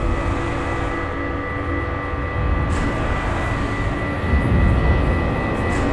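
A steady, dense engine roar fills the whole stretch, a broad low rumble with humming tonal layers on top. It swells slightly louder toward the end as a starship's warp engine, at full power, makes a warp jump.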